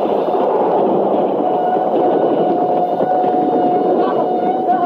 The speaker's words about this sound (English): Up on the roller coaster. Two cars coming around that last curve. Hey, you're right. They'll be at this platform any minute.